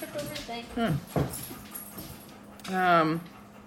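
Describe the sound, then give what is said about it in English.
A dog gives a few short yelps and whimpers with a soft bump or two, then lets out one longer, rising whine. “Was that the dog falling off or something?”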